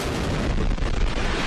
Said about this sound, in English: This is the Falcon Heavy This is a static test, so the engines are firing, but they're not going anywhere. They're testing that it's actually